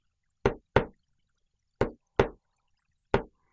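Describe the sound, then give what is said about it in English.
Knocking on a door, crisp, in paired raps: two knocks, a pause, two more, then another single knock starting a new round. No voices, just silence between. “Jesus is knocking on the door, and he's patient.”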